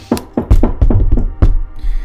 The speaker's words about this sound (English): Perhaps we should knock on his door. I think we should. So, cool. Yeah, head up to his door. Yeah. And give it a good old...